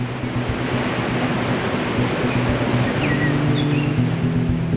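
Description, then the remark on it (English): Victoria Falls, where the Zambezi River drops over a cliff on the border of Zimbabwe and Zambia, roars in a steady, dense wash of rushing water that never lets up, with a few faint bird chirps high above the din. “The Lozi people called this place Mosi Oatonya, the smoke that thunders. But most people know it by its English name, Victoria Falls.”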